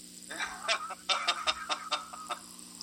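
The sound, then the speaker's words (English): A duck quacks repeatedly in a quick, uneven series of short, nasal calls, clear, with no voices over it. “You know, walks like a duck, talks like a duck. Yeah, it must be a duck.”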